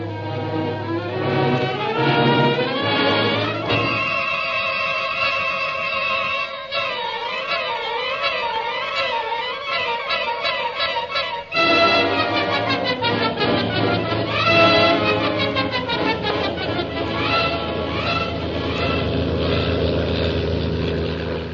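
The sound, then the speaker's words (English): A plane's engine roars steadily throughout as it flies along the China coast, its low drone running beneath a swelling musical passage of wavering, sustained tones. “Meanwhile, Shanghai Lil's plane carrying Jim and Kolo roars on along the China coast.”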